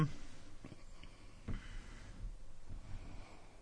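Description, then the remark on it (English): A couple of sharp pen clicks, fairly quiet, followed by soft scratchy writing on paper, with light breathing in the background and no talking. “Give me a pen.”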